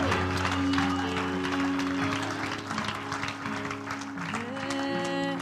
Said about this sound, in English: While you're clapping your hands to the Lord, let's give him some glory and some thanks for this choir and this music today.